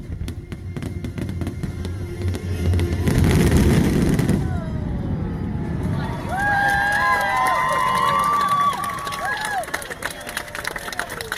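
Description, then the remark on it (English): A large crowd at Epcot cheers and claps as the Epcot Forever fireworks show ends, with a loud roaring swell partway through, then shrill whistles and high voices rising over the steady applause. “I figured I'd play just how what it sounded like in the crowd when Epcot Forever ended.”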